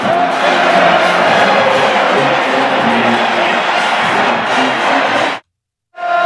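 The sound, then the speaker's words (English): A huge stadium crowd of tens of thousands, including the student section, roars and chants "Suck that tiger" together. It is a loud, dense wall of voices that holds steady for about five seconds before cutting off abruptly, then briefly resumes. “Listen how loud they all do.”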